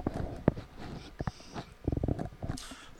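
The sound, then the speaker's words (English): A dog named Kano breathes heavily, with uneven rhythmic huffs and snorts and a rough, breathy texture, a few louder puffs standing out. No one speaks. “Kano, go breathe heavy somewhere else.”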